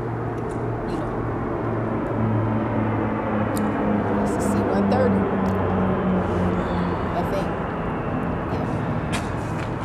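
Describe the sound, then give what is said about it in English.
A small propeller airplane, a Cessna likened to a Cessna 172, drones steadily overhead, its low humming engine tones sustained and slightly wavering beneath a broad rushing roar that stays loud and even throughout. “It's like a Cessna 172, more so.”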